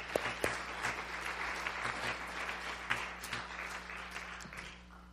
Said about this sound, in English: Thank you, Jesus. Somebody give the Lord a big hand clap.